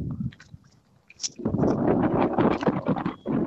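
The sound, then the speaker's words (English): Wind buffets the microphone in a loud, rumbling roar, dipping briefly before surging into a steady, gusty blast that fills the rest of the moment, during a morning duck hunt. “I can hear that wind.”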